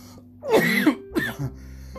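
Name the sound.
coughing and throat clearing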